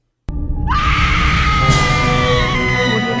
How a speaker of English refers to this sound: Speaking of women. It's time for Women Screaming.